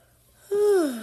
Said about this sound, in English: just a little yawn. Not really sleepy, but let's continue.